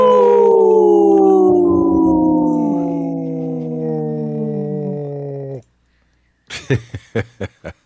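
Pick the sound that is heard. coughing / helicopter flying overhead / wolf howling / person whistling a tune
wolf howling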